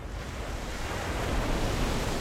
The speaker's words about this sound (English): Waves crash on the beach in Alexandria along the Mediterranean Sea.